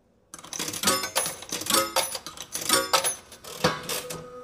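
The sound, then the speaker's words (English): Several metallic coins clink and jingle as they drop one after another into a machine, a bright series of rattling chimes with short pauses between them, no voices. “Let me put the coins in the machine.”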